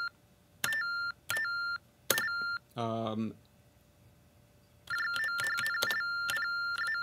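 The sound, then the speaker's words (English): Short, high electronic beeps sound as letters are typed on an electronic keyboard with a microphone held near its speaker: three spaced beeps, a brief voiced sound, then a quick run of steady beeps at the same bright pitch. “And what I'll do is I'll just type some letters, and you'll hear these.”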